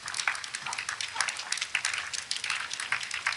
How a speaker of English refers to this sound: Okay, now you're hearing like four people clapping.